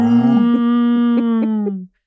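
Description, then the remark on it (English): A single long cow moo, loud, holding a steady low pitch for nearly two seconds before cutting off abruptly. “Can we get a cow sound?”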